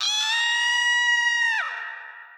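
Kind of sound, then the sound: sound effect, high-pitched scream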